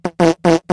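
A voice imitates a fart with four quick, loud, buzzy blasts in a steady rhythm, with short silences between them and no other sounds around.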